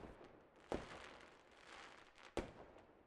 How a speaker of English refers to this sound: Wow, these fireworks look amazing, but not as amazing as you.